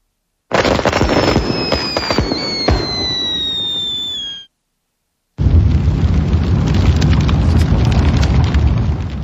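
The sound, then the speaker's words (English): Loud holiday fireworks burst and crackle, with whistling rockets streaking over sharp bangs, then a brief silence before a dense, continuous barrage of popping and rumbling explosions. “During the holiday fireworks, our barn has caught fire.”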